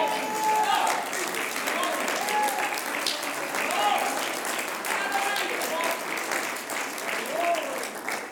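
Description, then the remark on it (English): A church audience claps steadily for several seconds as praise for being redeemed, a dense, even patter of many hands at moderate volume, with scattered voices calling out beneath the applause. “You'd have clapped better if Johnny hit it over the fence.”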